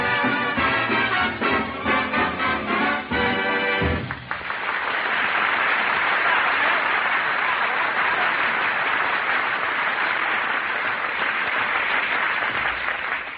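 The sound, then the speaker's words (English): Loud, sustained audience applause placed on a music record, rising right after a brief burst of music ends, a dense wash of many hands clapping that carries on steadily to the end. “He even puts applause on the record.”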